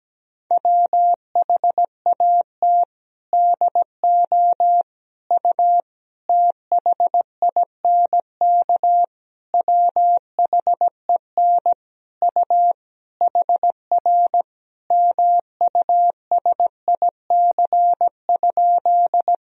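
Morse code practice sentences built from the top 300 words and abbreviations, sent at about 17 words per minute: a single steady mid-pitched tone keyed into quick dots and longer dashes, grouped with short pauses between words, continuing throughout with no voices.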